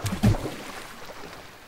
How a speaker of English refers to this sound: And then the segmented halves of the policeman fall into the water in a single symmetrical splash.